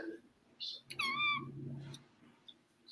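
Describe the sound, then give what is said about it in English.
A little baby kitten, held by a man, lets out one short, high-pitched meow, rising then falling in pitch, set against a low background murmur with a faint chirp just before it. “What's hilarious is you did that face right as the cat meowed, and it looked like you made that sound.”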